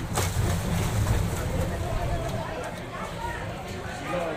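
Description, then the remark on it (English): A boat ride carrying seated passengers moves through water toward a dock, with a steady rumble of engine and churning water, plus wind buffeting, and indistinct voices underneath. “Remember to stay seated till the boat reaches the dock.”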